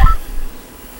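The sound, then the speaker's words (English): A short burst of electronic telephone dialing tones at the very start as a phone call is placed, fading almost at once into a quiet, low background hum. No one speaks. “Let me connect him.”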